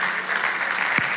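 A church audience applauds together, a dense, steady wash of clapping from many hands at full volume without a break.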